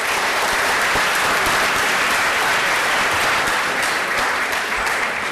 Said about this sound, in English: So it's a big round of applause for you for making you. this partition museum happen. Thank you. Thank you.